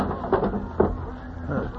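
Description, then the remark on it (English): A drawer in a small cabinet is pulled open with a few sharp wooden knocks and a low scraping rumble between them, fairly quiet overall. “That drawer in the small cabinet. There's a gun.”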